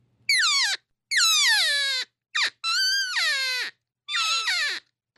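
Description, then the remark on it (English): A woman blows a game call in a series of five high, whining cow calls, each sliding downward in pitch, with one very short chirp in the middle. The calls are loud and nasal, with no talking. “So she's doing a cow call right now.”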